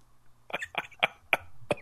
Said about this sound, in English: I thought we were, but I think we were still making noises. I think I contracted 1999 cough.